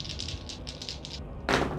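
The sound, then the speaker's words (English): Several dice, one for each of several characters, are rolled at once during a tabletop game: a rapid run of bright, clicky taps for about a second, then a louder, denser clatter as they spill and land. No one speaks. “So I roll all of them at once to save time.”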